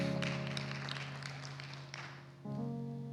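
An audience claps steadily for a few seconds, a dense patter of many hands, over a sustained keyboard chord that shifts to a new harmony near the end.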